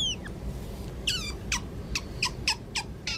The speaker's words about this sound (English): cut in the sound of otters. Or at least splashing.